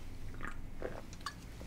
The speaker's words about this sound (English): I could pour my rock star into a Taxi mug, yet then I'd probably drink it too quickly. By the way, I think it's time to have a sip of a rock star.